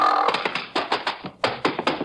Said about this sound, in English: This gives me an idea. I figure I can't kick the door open, but the mule can. I climb up on top of him because that's the safest place. Line him up with the door and tickle him under the left hind leg.